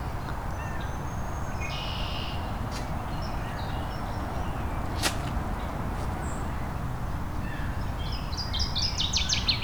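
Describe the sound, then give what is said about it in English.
Northern waterthrush calling: a few scattered high notes early on, then a quick, bright run of repeated chips near the end, over a steady rushing background noise. “There we go. Northern water thrush.”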